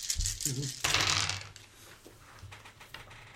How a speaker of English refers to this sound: It's a lot of fucking dice, guys. Yeah. A lot of sixes, too.